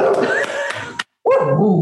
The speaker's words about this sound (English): There's my dog. She's like, time to be done with the call.